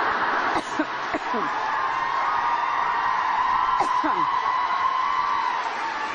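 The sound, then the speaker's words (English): A campus audience cheers and applauds after a speaker pops a lozenge in her mouth, in a loud, steady roar of clapping, with a few high whoops and shouts rising above it near the start and again partway through. “I swear this woman could break wind, and this audience would applaud.”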